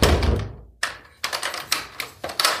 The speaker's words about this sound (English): Now close it, and I want to hear you lock it.